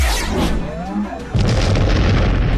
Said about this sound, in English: What follows is a massive explosion as the upper part of the deck is lit on fire.